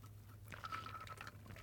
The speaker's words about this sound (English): I was just taking a sip of my lemon water. That's part of my new weight loss program, is plenty of lemon water. It's so refreshing.